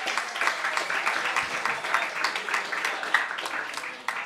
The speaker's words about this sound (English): Another round of applause for him. Thank you.